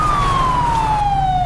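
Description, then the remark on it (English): A police siren wails steadily and loudly, its single tone sliding slowly downward, over a low rumbling engine drone. “If you're stopped, please turn off your siren.”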